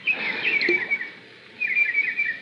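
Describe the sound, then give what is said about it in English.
Small birds playing in a fish pond chirp and twitter in two lively bursts separated by a short pause, clear, with a soft, noisy wash underneath like water being disturbed. “What's that? Oh, birds playing in the fish pond.”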